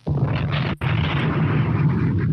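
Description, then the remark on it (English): A loud explosion sound effect: a roaring, crackling blast with heavy low rumble that drops out for an instant, then keeps thundering steadily. No one speaks over it. “So having hearing that explosion made me worry for a second.”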